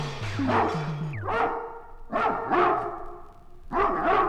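A dog barks in several loud, close bursts spread across a few seconds, some rising into whiny yelps, with low steady tones humming underneath at the start.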